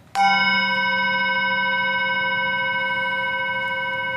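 chime ringing

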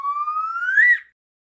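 slide whistle

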